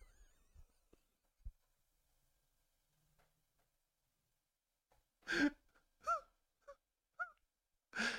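A car horn blares a short, loud melody of about five honking notes in a bouncy rhythm, preceded by a few seconds of near silence with faint thumps.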